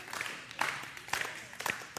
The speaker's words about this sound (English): So clap your hands. That's a part of it. There are lots of ways. Yeah. Woo! Clap your hands. Yep. So clapping your hands is a way.